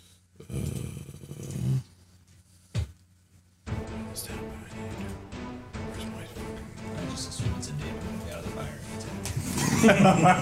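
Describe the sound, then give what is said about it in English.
A voice makes a low, rough growl in imitation of a bear, in a few bursts separated by short pauses, then a longer, louder stretch of vocal growling and grumbling. “Stop the bear. Growling so at poke the bear.”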